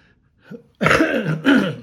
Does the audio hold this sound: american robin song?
no